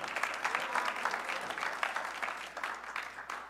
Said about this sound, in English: Come on, clap your hands and just praise God for that.